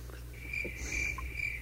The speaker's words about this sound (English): insert crickets. Right, that's quiet. It's a perfect little for crickets.